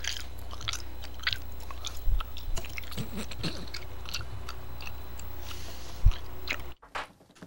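Wet chewing with repeated smacking and squishing bites in an irregular rhythm, fairly loud against a steady low hum, ending abruptly in near silence.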